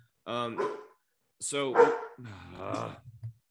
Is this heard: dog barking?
yes